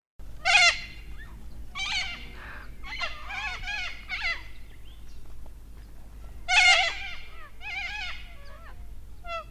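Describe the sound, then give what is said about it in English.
A series of harsh, raspy crested cockatoo screeches comes in loud, closely spaced bursts over a low, steady rumble, with the two strongest squawks near the start and again partway through. “The correct answer is the Salford Crested Cockatoo.”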